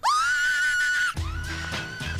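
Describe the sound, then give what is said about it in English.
A loud, sustained high-pitched vocal scream sampled from a song rises and holds for about a second, then breaks off as a dense music track with heavy bass kicks in underneath a fainter echo of the voice. “it's widely believed to be the scream by … at the start of his song”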